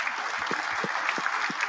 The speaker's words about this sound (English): I'm going to give her a round of applause.